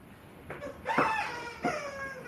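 A Golden Retriever chomps on a new squeaky chew toy from a BarkBox, producing three high, whiny squeaks in irregular succession, each sliding slightly in pitch, with a low background hiss and no talking.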